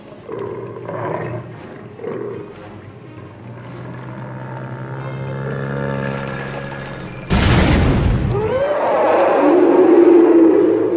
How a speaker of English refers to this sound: The explosion was small in radius, but powerful. The blast of kinetic energy violently shook the floor and walls of the beast's stomach.